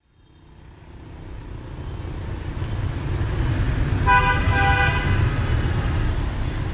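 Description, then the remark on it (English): Busy motorbike street traffic in Hanoi, Vietnam, rumbles steadily, swelling after a quiet start, with a loud horn honk sounding partway through over the engine noise. “This is Vietnam, where motorbikes race through the streets of the capital, Hanoi.”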